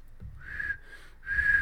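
A person whistles two sustained tones with a short gap between them, the second slightly longer and sliding down at the end, moderately loud over a low background rumble.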